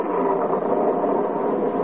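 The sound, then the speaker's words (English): Heavy rain pours onto a leaking roof during a duck-hunting trip, in a dense, unbroken hiss, steady and fairly loud throughout, with no voices or pauses. “Gosh, listen to that rain.”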